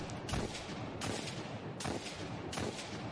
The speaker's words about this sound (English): Oh, hand cannon. It's Hawk Moon.